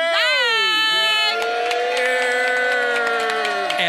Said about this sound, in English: Oh, my God. Yes, explosions. And as you can hear, we are in front of a live studio audience that is L-I-V-E.